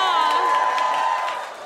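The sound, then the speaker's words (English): An audience claps and cheers, with a sustained high whoop riding over scattered, uneven claps that taper off toward the end. “Y'all didn't have to clap for us.”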